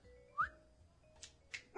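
A dog lets out a few short, sharp barks spaced unevenly over two seconds, fairly quiet, with no one talking.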